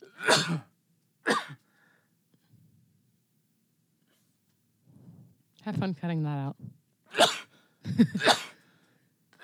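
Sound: sneezing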